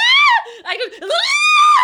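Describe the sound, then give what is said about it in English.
A voice lets out a loud, high-pitched imitation of a panicked scream, breaking briefly into a strained, wavering dip before rising into a second sustained shriek. “You know what the screaming is?”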